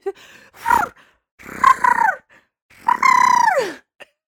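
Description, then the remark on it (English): A person imitates the ship's whistle from the film Titanic with three droning vocal blasts, each longer than the last. The final, loudest blast holds a steady pitch before sliding downward. No speech. “Sorry, any excuse to bring back my impression of the whistle from Titanic.”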